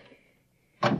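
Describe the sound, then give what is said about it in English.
A door opens with a sudden, loud scraping clunk that bursts in after a stretch of near silence and holds briefly at the end. “Now, this door is open.”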